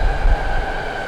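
A commuter rail train passing by outside rumbles steadily, with heavy low-end roar and a sustained higher tonal whine, continuous throughout with no voices.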